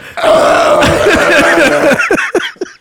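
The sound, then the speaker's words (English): A voice imitates vomiting: a loud, sustained guttural retching gag lasting about two seconds, followed by a few short choking heaves that trail off. “The vomit.”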